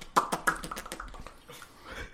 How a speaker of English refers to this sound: Hey, mouth breather. Whoever's mouth breathing.